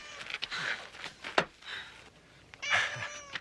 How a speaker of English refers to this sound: It was a cat.